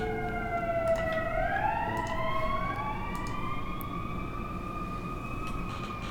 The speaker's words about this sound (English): Sirens going by.